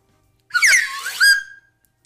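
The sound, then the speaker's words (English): A cheap slide whistle blown once in a short, breathy blast, its pitch swooping and wavering up and down for about a second before cutting off, loud with no talking. “Because this isn't a proper slide whistle. No, it's a cheap, shitty slide whistle.”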